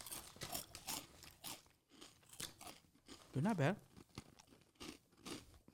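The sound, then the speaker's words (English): Loud crunching and chewing of crisp, spicy Fiery Hot corn snacks, an H-E-B private-label brand called Big Time Crunch: a rapid series of sharp crunches in bursts, with a brief spoken remark in the middle. “Does it live up to that name, Big Time Crunch?”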